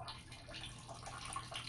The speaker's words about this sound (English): Guess what I'm doing right now? I am dumping water into the toilet at a very steady rate. Not too fast, but not all at the same time.